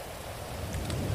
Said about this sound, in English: It's about to stop soon. Oh no, it's not. Yay, it's going at a time when it's raining. Yay, I can control the rain.